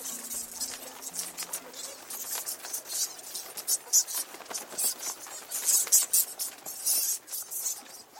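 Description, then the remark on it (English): A swarm of disturbed bats streams out overhead, a dense, continuous mass of high-pitched chittering squeaks and rapid fluttering wingbeats, with irregular bursts of louder chatter and a faint low hum underneath. “And because we've run in and disturbed them, they've all started flying out overhead. I can feel like wings flapping really, really close to me.”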